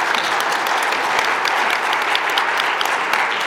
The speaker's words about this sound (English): That's amazing. Awesome. Quick round of applause. Yeah. That's awesome.